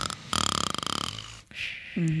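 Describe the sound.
A person imitates snoring with a single rattling, buzzy inhale lasting about a second, followed by a breathy exhale and a brief vocal sound, fairly loud.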